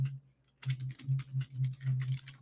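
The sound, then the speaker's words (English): Rapid typing on a computer keyboard, a quick run of clicky keystrokes after a brief quiet start, fairly loud with a steady low hum underneath. “Y'all hear me clicking and clacking on my keyboard?”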